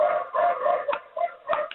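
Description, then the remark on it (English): A dog barks in a run of drawn-out, high-pitched yelping barks, with a few sharper bursts toward the end and no one speaking. “My dog is barking, actually.”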